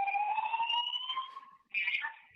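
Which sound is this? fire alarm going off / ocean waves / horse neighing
fire alarm going off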